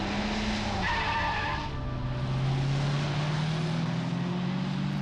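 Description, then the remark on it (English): A car engine revs up and accelerates as the car turns out of a nature preserve onto an empty highway, its steady drone climbing gradually in pitch under loud road noise, with a brief high tire squeal early on. “Faster! You have to drive faster!”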